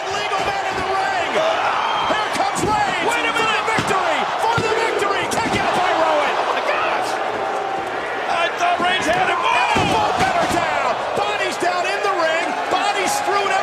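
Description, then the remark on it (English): A large pro wrestling arena crowd cheers and roars steadily for the whole stretch, a loud, dense wash of many voices punctuated by sharp thuds and slams as wrestlers land, including Seth Rollins going over the top. “Look at, listen to the crowd.”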